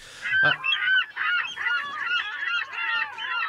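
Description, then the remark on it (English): A seagull squawks repeatedly in harsh, raspy calls, loud, in a steady rapid series of cries with no voices present. “That's the seagull shitting on us.”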